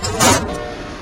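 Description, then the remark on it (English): A train engine surges into a brief loud roar as it picks up speed when its accelerator lever is moved upward, then settles into a steady mechanical hum with a tonal whine, with no one talking. “In my professional opinion as a train manager, it accelerated the train, it would seem.”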